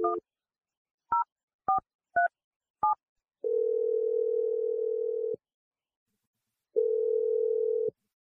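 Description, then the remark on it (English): Five quick two-tone keypad beeps from a telephone being dialed on the morning radio show Brooke and Jeffrey in the Morning, followed by two long, steady, low-pitched phone tones separated by a pause of silence. No one speaks. “I'm gonna dial her number right now.”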